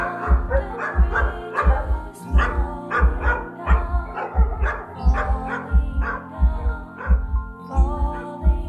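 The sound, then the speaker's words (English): Several dogs bark in a steady stream of overlapping barks and yips, loud, with a low, regular thumping pulse running underneath throughout, as someone walks down the aisle in front of them. “I want to walk down the middle of the aisle again to see if they'll get up and start barking”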